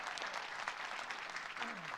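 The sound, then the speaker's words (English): A steady burst of audience applause for a woman, dense and even throughout, with many hands clapping at once and a brief murmur of voices near the end. “Give her a hand clap, right?”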